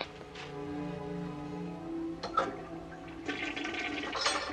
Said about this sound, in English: And then she tears it up. Tears it up. And throws it in the toilet and flushes it.